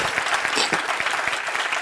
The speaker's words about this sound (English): Somebody need to clap their hands and say amen.